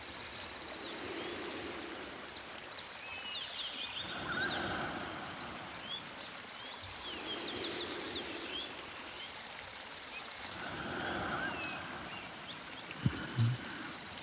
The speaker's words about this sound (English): I like to shut my eyes and listen to the birdsong around me. I try to imagine that they're singing for me, welcoming me into their sacred space.